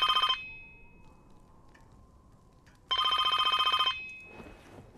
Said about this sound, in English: We're back to present day. The phone, it rings.